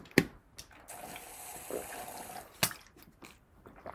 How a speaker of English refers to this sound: I'm going to take another sip, get a little hydrated. Stay hydrated, kids. Drink fucking water.